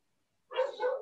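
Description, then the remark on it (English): After a moment of silence, pet dogs break into barking during a recording, a couple of quick barks running together at moderate volume, with no one talking over them. “Oh, it wouldn't be a recording if Jen's dogs didn't start barking.”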